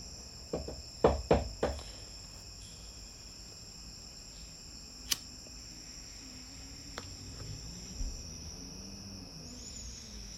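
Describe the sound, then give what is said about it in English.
A cricket trills steadily and continuously in the background, a thin high-pitched drone through a quiet night, with a few soft knocks and clicks near the start and no one speaking. “This light in the sky with a cricket in the background, of course.”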